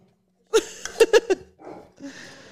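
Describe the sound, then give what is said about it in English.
A dog barks four times in quick, sharp bursts, the middle three nearly back to back, followed by a softer muffled rustle and breathy noise. “She's dog sitting. How many dogs?”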